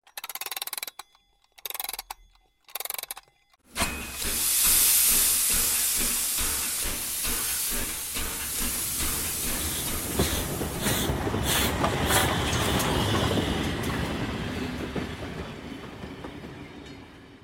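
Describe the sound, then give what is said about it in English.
A bright blue passenger train rolls steadily along the rails, a loud, continuous rumble with rhythmic clacking of wheels over track joints, after a few brief choppy bursts at the start. No one speaks. “So like you guys are talking animately, this whole conversation, they go out the window and the camera pans back over the train.”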